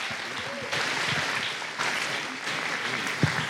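An audience gives a round of applause to students for sharing, a dense, steady wash of clapping that swells in a few stages and holds at a moderate level, with faint murmuring voices underneath.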